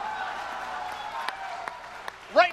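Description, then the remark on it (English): A few scattered, sharp claps stand out over a steady crowd murmur, spaced about every half second, before a brief voiced exclamation breaks in at the end. “The gay guy even claps like he's gay.”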